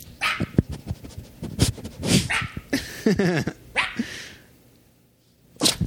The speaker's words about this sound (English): Oh, I scared him. I'm sorry, Arthur. I'm sorry. He's very confused. Sorry. I was trying to get him to bark into the mic.